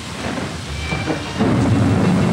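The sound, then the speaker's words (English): Steady hard rain of a tropical cyclone in Darwin hisses across the whole clip while low thunder rumbles underneath, swelling louder and deeper in the second half. No voices, just the continuous storm. “Then the wind increases. The rain begins, small and hard.”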